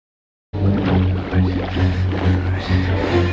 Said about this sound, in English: You can kind of listen to it and you hear Kong's roar. Yeah, listen to it like as it's kind of floating down after he's blown its head off, like as when the blood's in the water and the body's going down, it's the original King Kong.